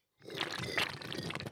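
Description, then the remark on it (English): A Peach High Noon drink being slurped in a loud, noisy wet rush lasting over a second, with two sharper airy surges partway through and no talking. “Good little slurpy slurp.”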